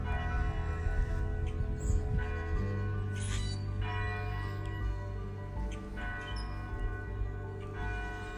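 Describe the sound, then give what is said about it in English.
Church bells ring steadily with overlapping strikes, their tones hanging and blending into a continuous resonant hum, with no voices present. “He hears the bells, but he never noticed.”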